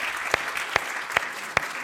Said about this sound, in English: If you're a visitor here today, why don't we give all of our visitors just a hand clap of welcome. And God bless you.